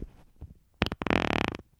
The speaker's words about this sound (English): Wow. I got a weird fart. My diet change is fucking with me. That was an audio shart. That smells poor. Yeah, that's not good. That's not a good smell.